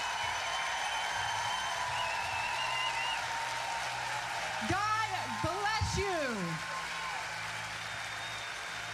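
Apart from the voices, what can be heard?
audience applause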